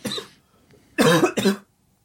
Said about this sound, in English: Ooh, every time I say that I'm sick, I cough, and it's like I'm just trying to prove to everybody that I'm actually sick.